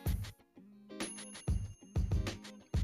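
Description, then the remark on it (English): A bright, ringing notification bell sounds in a series of quick, repeated dings over low thumping beats, loud, with no one talking. “Click that bell to get notified of our latest videos, and subscribe.”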